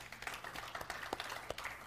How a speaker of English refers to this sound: So you can clap for her.